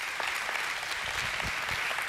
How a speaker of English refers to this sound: I appreciate that most of you are clapping. I don't understand why not.